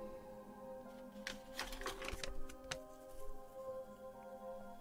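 A short burst of light papery flapping and rustling as a written note flutters through the air, several quick crisp flutters clustered in the middle, fairly soft over a faint steady background hum, with no voices.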